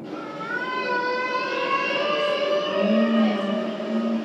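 A humpback whale's underwater call: long, wavering tonal moans sliding slowly in pitch, layered with rich harmonics and a low groaning note near the end, steady and fairly loud throughout.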